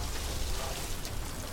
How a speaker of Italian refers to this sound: Io vedo un signore con un tubo dell'acqua che lava il marciapiede.